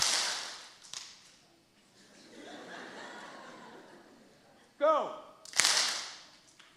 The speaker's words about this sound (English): Now this time when you slap your hand, I want you to say stand.